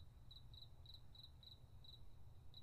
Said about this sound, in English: It's quiet, except for the crickets